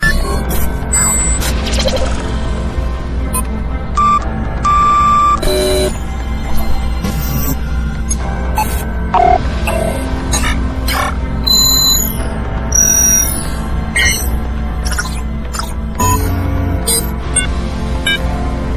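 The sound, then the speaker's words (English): An electronic show bumper jingle plays loud, with scattered high beeping blips and short tonal chirps over a dense, rumbling low drone that runs steadily throughout. “Love that new bumper. The old beep, boop, boop, boop, beep, boop, boop.”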